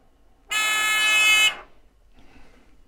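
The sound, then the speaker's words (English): A loud, steady electric buzzer hooked up to an Arduino board sounds once for about a second, a harsh droning tone rich in bright harmonics that cuts off abruptly, followed by faint background noise. “So I just put that on the board, and what I plan on doing is just pulling that out, and I can hook up my buzzer.”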